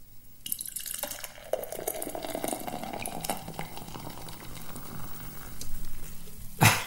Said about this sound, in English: Iced club soda.